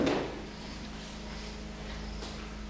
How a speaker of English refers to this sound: could you please close that door nicely because of the generator?